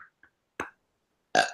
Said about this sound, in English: I'm going to burp. Sorry.